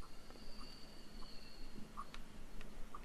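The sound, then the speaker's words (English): Faint crickets chirp in a steady, high-pitched drone with a few soft clicks scattered through it. No one speaks, and the insect sound fills an otherwise quiet pause. “I was going to say crickets.”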